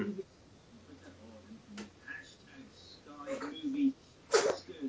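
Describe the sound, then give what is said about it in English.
Low voices murmur, then a single sharp sneeze bursts out loudly near the end before quickly fading. “Bless you.”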